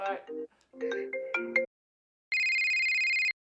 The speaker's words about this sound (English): Sorry, getting another phone call.